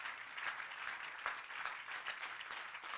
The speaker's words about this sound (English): If anybody believes that Jesus is a healer of all manner of diseases, I want you to put your Bible down and clap your hands. Say, thank you, Jesus.